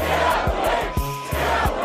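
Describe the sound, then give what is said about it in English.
A large crowd of protesters in Brooklyn yells and chants at the police in a loud, continuous roar, with heavy low thumps landing in a steady rhythm underneath the shouting. “Protesters used your music in Brooklyn to yell at the police.”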